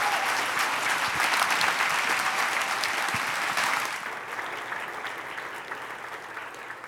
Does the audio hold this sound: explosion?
no